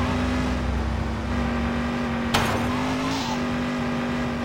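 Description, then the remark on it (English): A steady, droning car engine hums loudly throughout a video game driving mini-game in which a car is being delivered to a garage, with a sharp crash or impact about halfway through and a brief tire screech after. “Deliver this car to the garage.”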